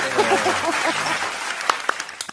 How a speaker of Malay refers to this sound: Wah, tepukan lagi.